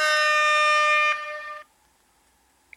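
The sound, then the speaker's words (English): An air horn sound effect, the rap horn kind, gives one loud, sustained, brassy blast lasting about a second. It fades into a shorter, weaker tail and then near silence. “Rap horn?”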